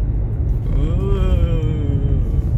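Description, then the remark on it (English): A steady, heavy low rumble of a car interior fills the whole clip, loud and unbroken, with a brief wavering voice-like tone rising over it partway through. “I have with me in the car today somebody you might know.”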